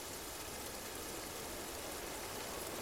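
Steady rain falling in a green springtime forest, a soft, continuous hiss of drops with no breaks or distinct individual hits, fairly quiet and even throughout, with no voices.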